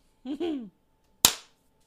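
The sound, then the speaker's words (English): A brief wordless vocal sound with falling pitch, then after a short pause one sharp, loud hand clap, made to mark an edit point, that snaps and quickly fades into quiet. “He has to give himself the clap all the time. Edit point.”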